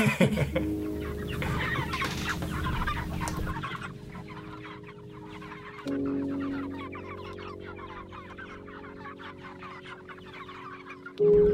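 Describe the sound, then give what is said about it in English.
A flock of meat chickens in chicken tractors clucks steadily and overlappingly throughout, over a constant low mechanical hum that shifts slightly in pitch partway through. “We moved the chickens out into the tractors, you'll remember, and everybody looked good and happy, and we were moving them along.”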